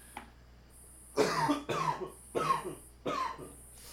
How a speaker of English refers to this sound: Yeah, so I apologize for the coughing that's going to occur. We are smoking something that is a little harsh, but it's fucking good because it's nice and giggly.